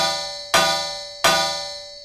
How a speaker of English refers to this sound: Never heard metal sound like that before.